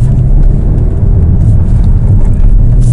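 A loud, steady engine drone dominated by deep low-frequency rumble, sustained throughout as a performance car drives with the throttle at 58%, oil temperature 57 and brake pressure 12% as it slows down, with no talking.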